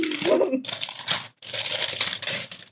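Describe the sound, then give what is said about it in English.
Steady crinkling and rustling as gift wrapping paper is unwrapped, with a brief pause partway through before the crackling paper handling resumes. “More ASMR. Wrapping paper is cute as hell.”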